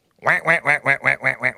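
A duck quacks rapidly about seven times in a steady, even rhythm, each nasal honk loud, with no other sounds around it.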